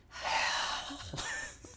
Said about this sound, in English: Just a heavy breath. Just a resurrected Voldemort whispering his first words.